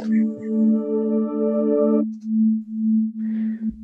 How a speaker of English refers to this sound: Can you play the sine wave just by itself with everything else turned off? Just so we can see the starting point.